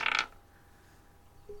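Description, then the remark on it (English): A quick clatter of dice rattling and tumbling for a split second as they are rolled in a game, coming up a total of 2, then a faint low hum through the remaining quiet. “So go ahead and roll the dice.”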